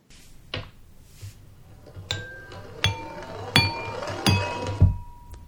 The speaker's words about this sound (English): So let's see, I'm going to play it for you now. And the idea is then that as I play it, you're supposed to hear 4 equally spaced clinking sounds.